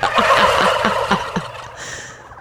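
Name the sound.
turkeys gobbling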